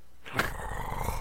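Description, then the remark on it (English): A bear roars once, loud and close, opening with a sharp burst that settles into a rough, rumbling growl lasting about a second. “All right, so that is our monstrant variant of the podcast, the Grave Bear. Roar.”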